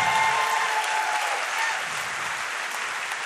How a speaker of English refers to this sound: Hey, let's give my volunteers a round of applause.